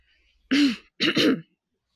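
A woman clears her throat twice as she approaches a table, a short rough rasp followed by a slightly longer double-pulsed one, fairly loud with silence around it.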